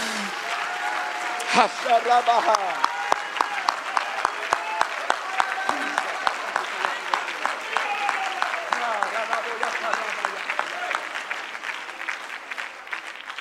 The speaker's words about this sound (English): Now, if you really believe that prayer, would you clap your hands unto the Lord?